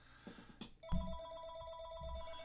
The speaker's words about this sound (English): I'm getting a phone call. I gotta write down the number. I don't know who this is.